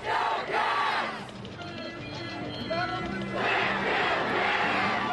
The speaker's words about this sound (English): Lots of let's go caps, lots of whistles, lots of buses, lots of hockey players, lots of drinking.